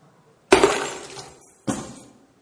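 A bunch of keys drops onto a hard surface with a bright metallic crash, then jangles down again a second later, each hit ringing briefly before fading into silence.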